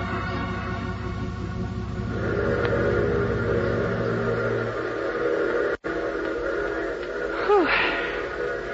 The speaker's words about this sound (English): Hey, I can hardly see you in this fog. Yeah. Well, at least the train seems to be on time.